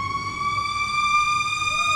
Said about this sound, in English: Over here, that road has nothing. That would be a fire truck.